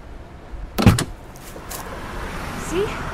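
A car door clunks open on the side of a highway, followed by a softer thud of it shutting, over a steady low rumble of passing road traffic.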